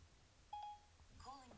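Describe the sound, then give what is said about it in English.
A single short electronic phone tone, steady and clear, from a call placed by voice command through Siri, sounds briefly before someone starts talking over a faint background hum. “He's calling.”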